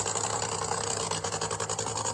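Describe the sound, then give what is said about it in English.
A Big Show Nitro 20 race car's engine drones loudly and steadily on a public roadway, headed toward Jarna, with a rapid rhythmic pulsing and vibration as the tires roll over rumble strips, the buzzing texture fluttering throughout without any voices. “And here comes, like I said, what appears to be a Big Show Nitro 20 car. Roll it across the rumble strips here.”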